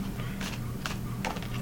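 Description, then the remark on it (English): Playing cards being shuffled: three short, crisp, papery bursts of riffling, spaced about half a second apart, over a steady low hum, with no talking. “Alright, we'll shuffle.”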